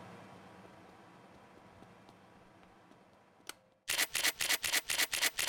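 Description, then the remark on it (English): After a few seconds of quiet background hiss, a loud, crisp crinkling of a chip bag starts up in a quick, steady run of about ten bursts as someone eats chips. “You may hear my bag. I guess I'm eating some chips right now.”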